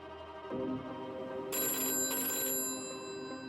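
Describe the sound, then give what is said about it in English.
Detective Ito's desk phone rings in the homicide special squad room after dark on May 15th, 2001: a bright, trilling electronic bell, one sustained ring that swells and then fades slightly, echoing off the walls, with no voices. “The ringing of Ito's desk phone echoes off the walls of the homicide special squad room.”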